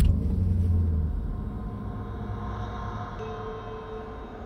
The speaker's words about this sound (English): He started the car.